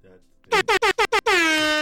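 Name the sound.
air horn blast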